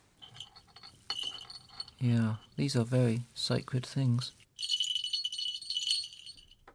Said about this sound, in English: These are two small hawk bells worn on the legs of a hawk, a trained hawk, and they were made somewhere in Pakistan in the early 1970s. I imported them from Lahore after sending postal orders or something over there, and these were worn on the legs